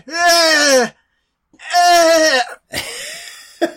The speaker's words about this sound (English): I mean, they're 2 feet away from each other. Just yelling. Yeah, I hear them.